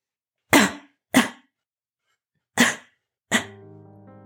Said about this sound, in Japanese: あれ？お母さん、咳をしています。咳です。大丈夫でしょうか？